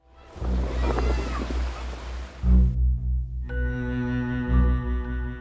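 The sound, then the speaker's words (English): A steady wash of Pacific Ocean surf fills the first few seconds, loud, then gives way to sustained, droning musical tones that swell and layer. “The vast Pacific Ocean surrounds the coral atolls that make up the former U.S. territory of the Marshall Islands.”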